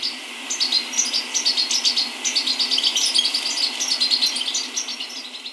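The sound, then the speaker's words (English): A small flock of songbirds twitters continuously as it flies off together, many high, quick chirps overlapping in a busy chatter against a soft steady background hiss, moderately loud with no voices. “But they are easily spooked and will fly off together in a small flock, twittering as they go.”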